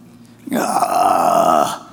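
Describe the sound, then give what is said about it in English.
A person imitates a big fish's long, loud, gurgling belch, lasting just over a second, alone, rising abruptly and cutting off sharply. “So they throw him over, and then a big fish comes, swallows, undoubtedly a whale or something like that, comes and then belches him up on the shore.”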